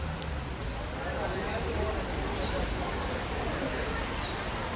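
Heavy summer rain pours down steadily on a city street in São Paulo, Brazil, in a dense, even hiss, with a low rumble of city traffic beneath it and no break in the downpour.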